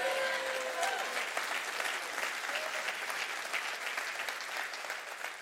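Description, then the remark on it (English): A large audience applauds steadily for several seconds during a sermon, a dense, even wash of clapping with a few faint voices calling out underneath. “Clap for the word of God.”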